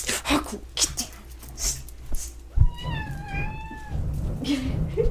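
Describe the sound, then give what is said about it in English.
A single drawn-out meow from a female cat, fairly loud, rising then falling in pitch over about a second, preceded by shuffling and handling noises. “Did you guys hear her? That was her saying Merry Christmas.”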